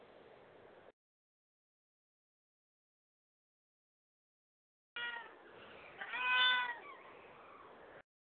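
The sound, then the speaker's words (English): Kittens of a nursing mother cat meow in a high, wavering cry that swells and fades over a few seconds, fairly clear above a soft background hiss, following a short burst of noise and a silent gap. “I hear some kitties.”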